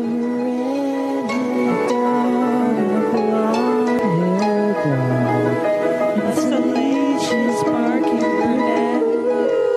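Several dogs howl together in a loud, sustained chorus with sliding, wavering pitches, and a few sharp barks break through near the end. No one speaks.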